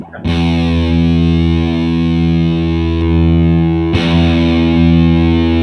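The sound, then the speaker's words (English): A heavily fuzzed electric guitar chord rings out loud and dense with buzzy harmonics, sustaining for several seconds before being struck again. The asymmetrical fuzz distortion sounds thick and saturated, with no talking. “Okay, that's got to be the asymmetrical.”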